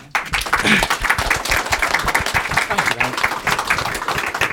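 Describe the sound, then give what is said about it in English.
A crowd breaks into sustained applause, many hands clapping densely and steadily for several seconds, fairly loud, with a murmur of voices mixed into the clapping. “And I think that deserves a round of applause, frankly.”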